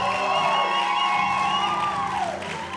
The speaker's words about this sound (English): All right, why don't we give Jesus a round of applause? Come on.